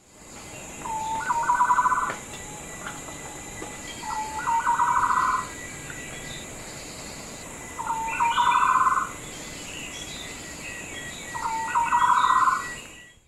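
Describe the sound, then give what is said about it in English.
A green broadbill, a rainforest-interior bird from southern Thailand, calls four times at steady intervals, each a short rising trill of bubbling notes, clear over a soft hiss of insects and rainforest background. “So the first natural sound in the theme music is a cool bird from Southeast Asia, a green broadbill.”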